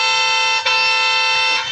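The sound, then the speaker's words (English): A loud car horn blares in a sustained honk while stuck in a traffic jam in town, briefly interrupted once before resuming steadily; no voices are heard. “I started honking my horn.”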